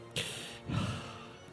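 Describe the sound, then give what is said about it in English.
Heavy breathing: two loud, breathy, airy breaths, a sharp intake followed by a longer, lower exhale, with no talking. “Who's breathing heavy?”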